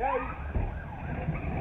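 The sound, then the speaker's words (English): A police siren wails in rising and falling sweeps, loud, during a high-speed chase, over a low rumble of traffic and engine noise. “There's a high-speed chase.”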